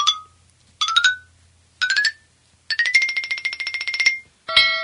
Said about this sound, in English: I love the bell, Captain. I just can't stop ringing it.